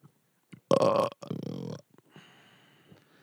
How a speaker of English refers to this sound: Oh, did... We got our burp bid on this one. That did get recorded.